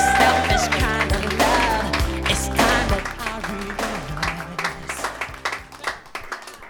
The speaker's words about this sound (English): That was amazing. Big round of applause to Melissa as …, guys.